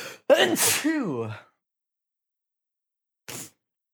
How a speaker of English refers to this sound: Got him sneezing.